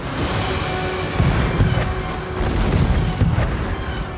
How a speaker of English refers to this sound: The Dutchman gave us her broadside. As the infernal cannons blazed, our hull split down the middle with a sound like thunder.